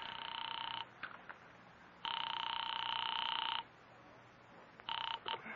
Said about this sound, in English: I am actually ringing North Tacoloma 3.